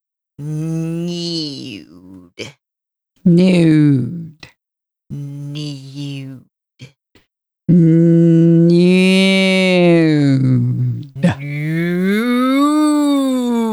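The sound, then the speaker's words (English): A person imitates a cow with a series of long, drawn-out mooing sounds, about five in all, loud, with short pauses between and the last two stretched longest. “Nude. Like a cow.”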